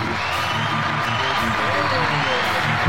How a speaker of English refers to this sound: We got music and applause. This is good. We got a live studio audience. Right on. We actually do have a live studio audience with us today